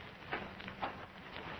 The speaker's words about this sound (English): I hear footsteps outside, Master.